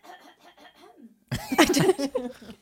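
A short murmur of voice gives way to a loud, raspy throat clearing, a rough burst of about a second with a gruff, almost cough-like edge.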